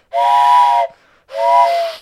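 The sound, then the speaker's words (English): Two loud blasts of a steam train whistle as the train is leaving, each under a second long with a breathy hiss, separated by a brief pause; no talking. “Yep, now it's we're getting on the train. It's train's leaving.”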